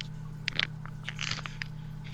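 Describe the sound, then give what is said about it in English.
Irregular crunching and gnawing bursts as someone chews on a microphone lead, scraping against the mic over a steady low electrical hum, with no voices. “He's chewing on the lead.”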